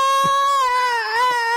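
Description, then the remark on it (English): A frog, picked up by hand at night, screams in one long, unbroken, shrill wail, steady and loud with a slight dip in pitch partway through, sounding almost like a crying baby. No one speaks. “And, God, I remember we were out there, and Clay picked one up, and it screamed.”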